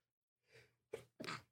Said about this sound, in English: Excuse me. Woo. Yeah, big sneeze.